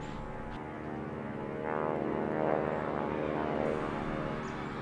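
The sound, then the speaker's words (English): A steady, droning engine roar of a squadron of German Messerschmitt propeller fighter planes flying over the coast, with dense harmonic hum that swells in the middle and holds loud to the end, no voices. “As if to answer Carrie's question, the air raid sirens began to go off as a squadron of German Messerschmitts began to fly over the coast.”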